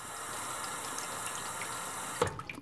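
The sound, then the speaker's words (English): A drinking fountain in a hallway runs with a steady hiss of flowing water, then abruptly shuts off with a small clunk and a brief splash near the end. No one speaks. “as you're walking down the hallway, and I can tell there's the water fountain, I can hear it.”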